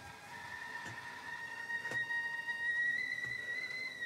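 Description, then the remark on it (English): A kettle whistling on the boil in a kitchen, a steady high shrill tone that climbs slightly in pitch and holds throughout, with a soft hiss and a few faint clicks beneath it. “Kettle is on the boil.”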